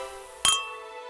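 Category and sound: household object, glasses clinking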